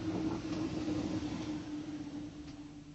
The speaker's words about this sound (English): Ah, here's the Chislehurst train.